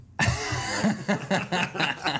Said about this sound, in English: And let me do this on the mic. I'd like to offer you my services if you need someone to offer up a hacking cough.